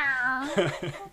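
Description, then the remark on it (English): A drawn-out, wavering yowl like an upset cat, apparently voiced by a person, sliding downward in pitch before breaking into a few short vocal bursts, fairly loud. “If you ever tried to pull a cat off a curtain if they're stuck, you know the animals do not like to be helped.”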